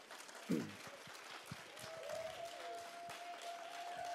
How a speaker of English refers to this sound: Yes, yes. I mean, you can't clap enough for that. You can't clap enough for that.